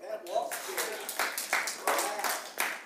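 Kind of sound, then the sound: crowd, audience clapping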